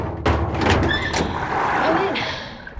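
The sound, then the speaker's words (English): A stuck dumbwaiter door is forced, with a few heavy thuds in the first second followed by grinding, metallic scraping as it strains against its track. “The dumbwaiter door. It's closed. Can you slide it open? Stuck!”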